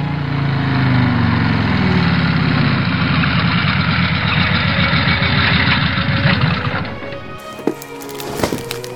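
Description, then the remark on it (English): A motorcycle engine idles loudly with a steady, throbbing rumble, then shuts off near the end as the rider parks the motorcycle, leaving a few scattered clicks and clunks. “I thought as I parked the motorcycle and took off my helmet.”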